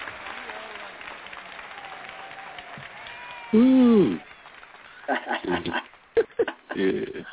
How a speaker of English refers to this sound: Let's clap it up. We're going to have to clap it up for PhD. All right, let's clap it up for PhD. He did well.